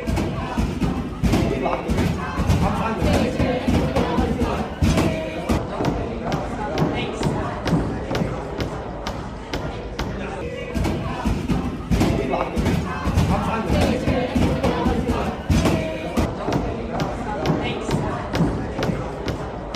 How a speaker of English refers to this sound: And this is what it sounded like as they were locked in the library and the pro-Palestinian protesters were outside banging on the doors.